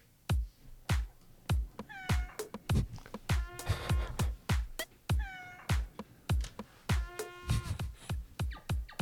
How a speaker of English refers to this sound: Okay, I can hear a cat, a trumpet, and an elk bugle. Yeah, you got it. Oh, that is like the definition of cacophony.